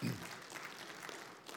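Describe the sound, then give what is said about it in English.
An audience claps steadily, a dense, even patter of many hands with no clear individual beats, fairly soft throughout and holding level for under two seconds. “I'd love for us to, yes, go ahead, applaud.”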